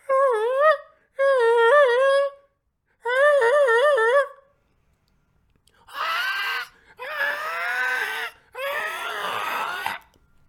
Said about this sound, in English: The gulls are crying this morning. I don't know if you guys can hear that.